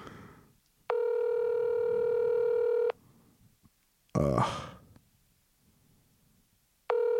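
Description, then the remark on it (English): A telephone line tone as a call is placed to a friend on someone else's phone, sounding loud and steady for about two seconds, followed by a brief noisy burst, then the same tone starts again; no one speaks. “I'm calling Tim on your phone”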